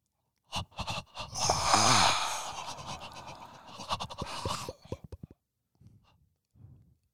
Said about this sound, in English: You usually ask a question while we're breathing.